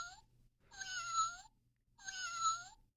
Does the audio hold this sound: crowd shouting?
no